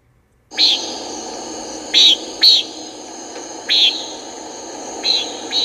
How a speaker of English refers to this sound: All right, that was the Common Nighthawk.